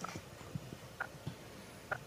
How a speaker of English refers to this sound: It sounds like a ticking clock. Well, what are those messages? The that's what that Morse is. Code. Morse code.